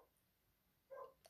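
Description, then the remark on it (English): A single muffled, faint dog bark, followed by a soft click against a quiet background hum. “Because I can hear my dog barking.”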